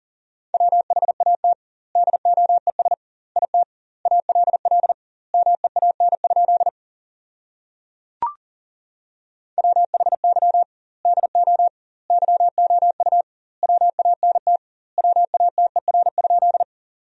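Fast Morse code at 40 words per minute, keying sentences from the top 200 words with double word spacing: a steady mid-pitched beep in rapid dots and dashes, grouped into words separated by short gaps, with a brief click during a longer pause midway.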